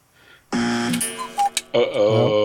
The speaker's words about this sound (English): Uh-oh. Oh, we're in a roll. There's that darn buzzer again. Oh, well.